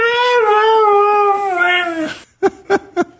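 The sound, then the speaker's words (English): A dog, Mishka, a famous dog with over 100 million YouTube views, lets out a long, wavering, almost speech-like howl that slides in pitch, then breaks off into four short, sharp yelps in quick rhythm, loud. “I want to play another short clip for you, this time of dog owners treating their now famous dog Mishka with over 100 million YouTube views like a human.”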